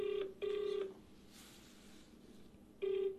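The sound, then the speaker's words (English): Telephone keypad dialing tones as someone phones a woman back: three loud, steady electronic beeps, two close together and a third after a quiet pause, with no talking. “Must I phone her back? One last time.”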